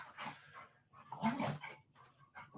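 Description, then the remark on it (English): Dogs bark in a few short, irregular bursts, with one louder, fuller outburst in the middle and quicker yips after it, with no talking. “And then go take care of your dogs.”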